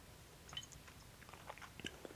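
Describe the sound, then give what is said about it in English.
Quiet mouth sounds of someone taking two swigs of a drink: soft wet clicks and small swallowing noises in a short sequence, with no talking. “I just did that just now just so that I could have a reason to take two swigs instead of one.”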